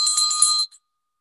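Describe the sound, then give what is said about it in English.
A small engraved handbell, inscribed as a gift for 20 years of teaching, is rung once in a quick, bright burst of high metallic tones lasting about half a second, followed by a faint, brief after-ring. No one speaks. “I want to introduce the provider bell.”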